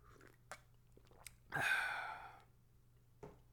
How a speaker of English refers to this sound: A little sip of water, too. Chase that back with some water.